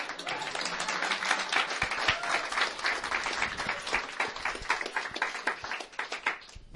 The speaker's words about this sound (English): We clap really loud where I'm from.